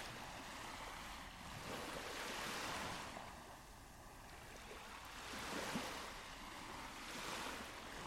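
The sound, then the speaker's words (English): Ocean waves surge and recede in slow, broad swells, rising around three and six seconds with steady hissing surf in between, continuous with no voices. “you'll hear plenty of ocean and tide sounds weaving in and out of the melodies, which I also feel like kind of closely and deeply connects to the idea of this deep breathing in the song, as I kind of always look at the waves as the ocean breathing.”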